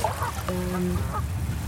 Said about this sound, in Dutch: De ganzen in de baai zijn het geloof ik niet helemaal eens met mijn plukken hier. Maar ik ben zo weer weg.